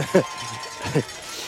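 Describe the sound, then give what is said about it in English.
Mississippi State fans ring cowbells at a baseball game. Two short bursts of bright metallic clanking rise above a steady wash of crowd noise, with a thin sustained ringing tone underneath. “You got the Mississippi State Cowbells going on down there, don't they?”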